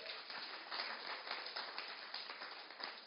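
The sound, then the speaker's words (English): A crowd applauds a group of children, many hands clapping in a dense, steady patter that stays fairly even for about three seconds, with no voices over it. “Give them a round of applause, everyone.”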